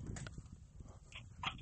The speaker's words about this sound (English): She doesn't bark or growl. I mean, she'll growl and bark, but not very often. It's like, she's like, and then shuts up. Why does she growl? Growl. Because she's a dog. And she likes the growl.